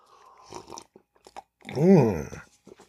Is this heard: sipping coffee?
yes